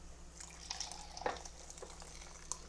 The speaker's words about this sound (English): So they're done. So I'm gonna cheat here a little bit. I'm gonna pour off the juice.